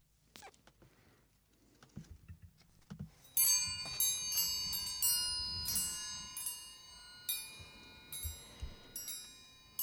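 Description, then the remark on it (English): After a few soft clicks and rustles, bright metal chimes are played to begin a short period of silence, struck about ten times at a steady pace, each tone lingering and overlapping into a shimmering wash. No one speaks. “will play the chimes to begin the silence.”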